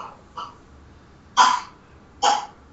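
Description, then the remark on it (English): A young boy coughs, two fainter short coughs first, then two loud, harsh bursts about a second apart, with no talking. “is that a cough or a dog? No, that's my son.”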